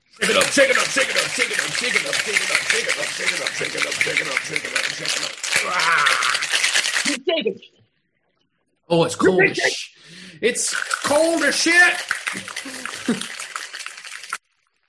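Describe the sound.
A cocktail shaker full of ice is shaken hard for several seconds to aerate and dilute the drink, a loud, steady rhythmic rattle. Then it stops, and a voice talks briefly after a short pause.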